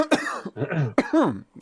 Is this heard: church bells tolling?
no